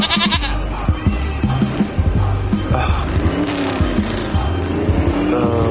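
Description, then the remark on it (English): A goat bleats several times in wavering, nasal cries, loud, over a busy background of rumbling engine noise and other clatter. “You should be putting handcuffs on that goat, not me.”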